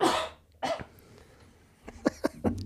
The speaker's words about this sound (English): And Copper's here with us, too. So if you see and hear puppy noises, it's him.